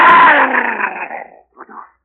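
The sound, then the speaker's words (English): A dog growls loudly and harshly, the snarl trailing off over about a second and a half before a brief second growl follows. No one speaks. “Speak to the dog. Speak to him.”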